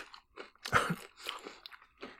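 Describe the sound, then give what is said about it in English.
Crunchy munching, several bites and chews in an uneven rhythm, with one louder crunch standing out. No one talks. “Is this a rare news munching mashup?”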